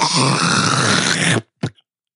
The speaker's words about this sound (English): Oh man, we need to have a sound clip to introduce our spit roast, like a one that we play every time. Yeah. Do you want to hawk a loogie in the mic real quick?